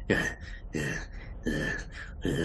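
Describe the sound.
A voice imitates the heavy breathing of Old Rawhead, a large creature sitting back on its haunches: four rough, raspy in-and-out breaths in a steady rhythm, fairly loud, with no words spoken.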